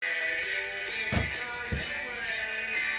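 door being closed

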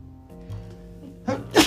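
a sneeze

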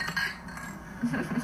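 glasses clinking

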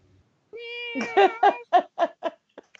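cat meowing

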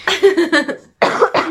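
cough

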